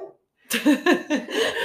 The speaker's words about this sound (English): There's some dog interruptions. I apologize.